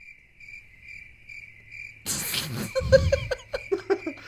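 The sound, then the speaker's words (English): A steady, high-pitched cricket chirps in a quick repeating trill for about two seconds, then a sudden loud burst of noisy, choppy sound cuts in and drowns it out. “Speaking of cricket. Cricket.”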